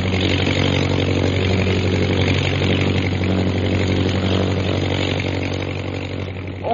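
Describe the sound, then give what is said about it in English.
A small airplane's motor, turned on while the plane loses altitude and flying speed over a village, runs at a steady, loud pitch, its buzzing, harmonic drone holding constant throughout with no voices, then swelling slightly at the very end. “Jim, I have to turn my motor on. We're losing altitude and flying speed.”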